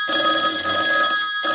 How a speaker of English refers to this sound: See, I have this clip on YouTube, and the best thing about it is it's animated, so it only just sounds like a phone's ringing. It looks like a phone's ringing.